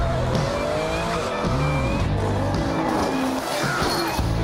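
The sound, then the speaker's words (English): Race cars roar on a racetrack as tires squeal and skid and cars wreck and pile up, with sharp rising and falling screeches layered over dense, continuous engine noise for several seconds. “Oh, there's a skid. Oh, and there's a wreck. The cars are piling up.”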